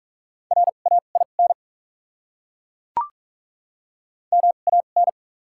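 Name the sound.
morse code tones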